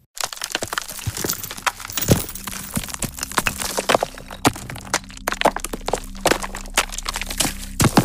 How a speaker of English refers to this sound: Stones and Debris by Just Sound Effects features a large variety of movements and shattering of stones, rocks, bricks, and more.